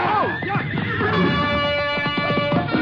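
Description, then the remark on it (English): A frightened horse rears over, whinnying shrilly, its wavering, quavering neigh rising and falling for a few seconds over a steady, busy background of noise. “The frightened animal reared over and knocked Small into me before Clark could grab the bridle.”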